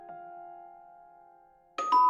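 A doorbell chime rings as a steady, slowly fading tone, then two sharper, louder notes strike in quick succession near the end.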